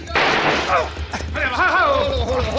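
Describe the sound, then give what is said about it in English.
A single loud gunshot in a Cisco Kid western drama scene bursts out near the start and rings off into a noisy tail, and a voice then calls out over the fading echo. “Now, Benton, watch this shot.”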